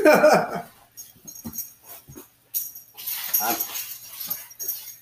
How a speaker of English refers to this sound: Your dog's trying to kill me.